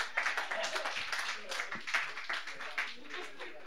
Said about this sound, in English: I'm really glad my small penis got a fucking round of applause.